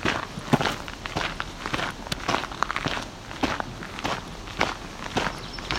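Steady footsteps crunch and rustle through leaf litter and twigs on the floor of a mature white pine stand, heading into a clearing, an even walking rhythm continuing throughout with no talking.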